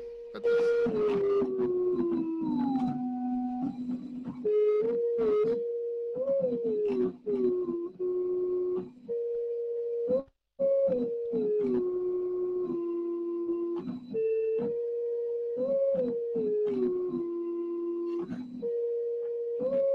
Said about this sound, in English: It's going to be kind of more me just playing random notes here on a undersized keyboard.